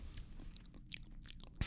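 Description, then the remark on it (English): Chewing into a microphone with wet, crunchy bites and mouth clicks in an irregular rhythm, loud and intimate, with no talking. “I feel bad for, like, chewing and just talking into the microphone.”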